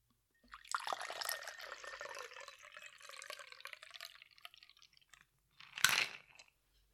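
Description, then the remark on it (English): Ice rattles rapidly and steadily inside a cocktail shaker for about four seconds, fairly loud, as a rose-colored drink is mixed; then after a short pause comes one brief, sharp clatter. No one speaks. “But I will say that I can shake 40 times. We do five sets of 8.”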